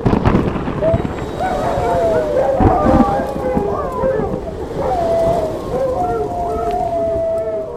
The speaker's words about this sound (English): I can tell you that it was a dark and stormy night. The thunder rumbled in like the backfire of a diesel engine as the bare lightning revealed the werewolf, who howled in blood-curdling rage across the unsuspecting land. Or I can just do this.